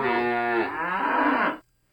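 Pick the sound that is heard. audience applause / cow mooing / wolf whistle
cow mooing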